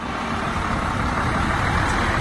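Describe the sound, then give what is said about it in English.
A steady, loud rumble of heavy aid trucks, 100 of them crossing from Egypt into Gaza carrying food, water and medical supplies, with engine drone and broad road noise holding constant throughout and no voices. “Meanwhile, 100 aid trucks crossed into Gaza, bringing in desperately needed food, water, and medical supplies.”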